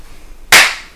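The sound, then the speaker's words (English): A single sharp, loud smack of people slapping each other's hands, bright and crisp with a short fading tail, heard on its own with no voices. “You guys stop slapping each other's hands unless you want to slap me.”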